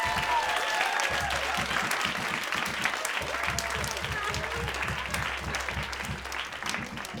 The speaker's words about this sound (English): Everybody, a round of applause for their entire family.